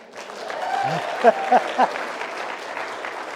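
A crowd applauds as if Jesus were in their midst, a dense wash of clapping that holds at a fairly even level throughout, with a few short vocal whoops rising out of it partway through.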